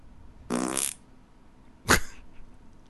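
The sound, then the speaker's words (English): A buzzy, sputtering mouth fart blown with the lips, fairly loud, followed a second later by a shorter, sharper burst, with quiet background in between. “Okay, it was a mouth fart.”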